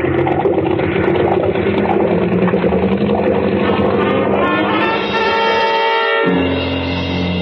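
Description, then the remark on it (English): A loud, steady drone of a boat's two big engines fills the whole recording, a deep mechanical rumble with a constant hum, briefly dipping near the end before resuming at full strength. “And two red-hot manifolds absorbing all the heat of the two big engines.”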